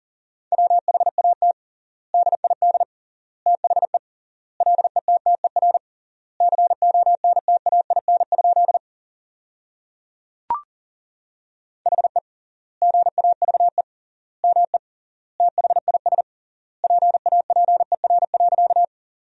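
Fast Morse code at 40 words per minute, a single steady mid-high tone keyed in rapid dots and dashes, sending sentences made from the top 500 words in quick groups with triple word spacing, and a lone click partway through. No voices.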